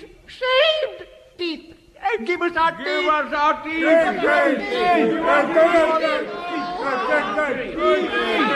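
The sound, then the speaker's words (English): A crowd of men shouting and clamouring together as they come out of an underground dungeon, a few scattered voices at first swelling after a couple of seconds into a loud, dense, continuous uproar. “Dear listeners, from out of an underground dungeon came a crowd of toothless, ragged men in brown paper nightshirts.”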